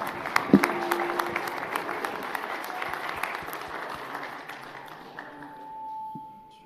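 A crowd at a boxing event breaks into sustained applause for everybody on the stage, dense rapid clapping that stays steady for several seconds before thinning out, with a faint held tone emerging beneath it near the end.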